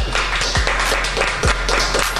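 A small group applauds steadily for a couple of seconds, dense overlapping claps with no talking over them, led by a chef wearing a chapeau in a radio studio.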